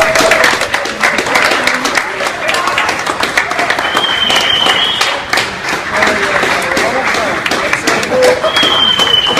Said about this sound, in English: I understand this is at a Best Buy, and the applause that you're hearing is actually staff applauding and thank.